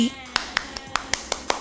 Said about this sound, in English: Give yourself a hand, a round of applause.